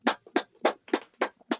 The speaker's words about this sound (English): I'm clapping because people couldn't see me bowing down to you.